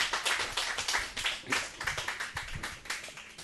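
Audience applause fills the space, a dense patter of many hands clapping steadily at moderate volume, with no voices standing out.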